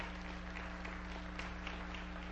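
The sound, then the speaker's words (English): A church audience claps their hands for God during a morning service, a dense, steady wash of overlapping claps, with a low electrical hum underneath. “Come on, give God a hand clap this morning.”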